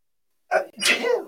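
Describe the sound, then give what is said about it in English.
A single sneeze: a short sharp intake burst followed by a louder, breathy explosive release that trails off, heard alone with no talking. “Bless you.”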